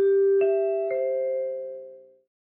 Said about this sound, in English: Okay, let's hear those NBC chimes and let's get going with Saturday night's main event.